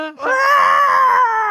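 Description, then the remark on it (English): A person imitates the screech of Taco, the talking pterodactyl: one sustained, strained, high-pitched shriek lasting over a second, loud and steady, with a brief lower vocal onset before it. “It's Taco, the talking pterodactyl.”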